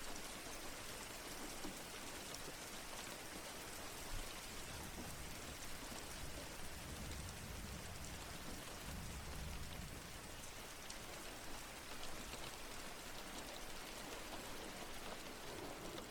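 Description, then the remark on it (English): Steady rain pours down on the roof of a house, a dense, even hiss of countless drops with no pauses, constant for the whole stretch, with no voices. “Imagining each raindrop hitting the roof.”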